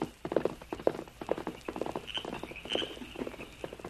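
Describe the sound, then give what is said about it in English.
A limping pony's hooves clip-clop at a steady walking pace, each hollow knock distinct, with a slightly uneven, halting rhythm like a limp and a faint background hiss. “His pony is limping.”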